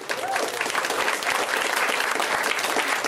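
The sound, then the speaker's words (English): An audience claps steadily, a dense wash of many hands striking at once, loud and even throughout with no pauses or voices breaking through. “Huge deal. You should clap.”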